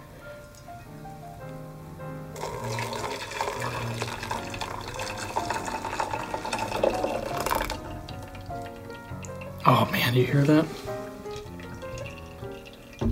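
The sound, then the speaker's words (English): Hot water pours steadily over Hemisphere coffee grounds to bloom them for several seconds, a continuous splashing trickle, then a brief burst of louder sloshing; a voice speaks briefly near the start. “We're going to just quickly bloom it.”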